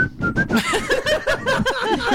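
A person whistles a few short, breathy notes, a quick little tune in thin bursts with airy noise around them, and no talking.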